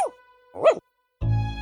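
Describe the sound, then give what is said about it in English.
A dog lets out a single quick, sharp bark, clear, with a brief pause before a steady sustained musical tone begins. “But the moon tiptoes quietly, chasing the dark, and smiles down on the dog that gives a quick bark.”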